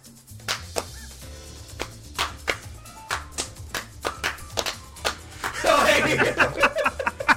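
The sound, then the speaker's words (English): A string of sharp, loud slaps at an uneven, fairly slow pace, like someone starting a slow clap, over a low murmuring background, with a denser noisy burst near the end. “Yeah, it's just the slaps. Like 100% slap, bro. Like somebody trying to start a slow clap.”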